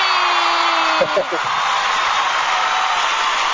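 A crowd cheers and applauds for a birthday in a steady, dense wash of clapping, with a brief high whoop rising out of the noise about a second in.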